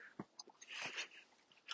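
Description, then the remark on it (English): Soft mouth noises of someone chewing while talking, with wet clicks and crunchy bursts, faint and intermittent with a few whispery breaths. “Hope the chewing isn't annoying you.”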